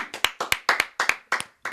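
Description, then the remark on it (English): Rhythmic clapping, sharp claps landing in quick pairs in a steady repeating beat, fairly loud, with no cheering voices or talk. “The crowd going wild.”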